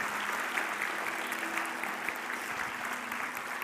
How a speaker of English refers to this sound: Can we cheer for those who have accepted Christ today? Yeah. Yes.